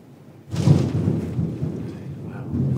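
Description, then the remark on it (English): A loud thunderclap bursts in after a brief quiet moment, then rolls on as a deep, sustained rumble with a faint hiss of rain underneath. “It's quite a thunder strike at the end of that story.”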